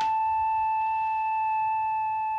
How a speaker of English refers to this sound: The simplest one of all is something that any lab technician must have seen at one time or another. It's called a sine wave. It's very smooth, very flute-like.